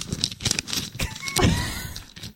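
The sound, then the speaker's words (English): Papers being shuffled: a quick run of dry, crinkly rustles and soft flaps in irregular bursts, moderately quiet, with no voices, stopping abruptly after a couple of seconds. “That's shuffling of papers.”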